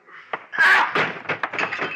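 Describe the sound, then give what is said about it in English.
A chair thrown at a man crashes loudly, a sharp thump followed by a burst of clattering, knocking impacts that rattle on for a couple of seconds. “Then I found something to throw. Something I could aim just generally. A chair.”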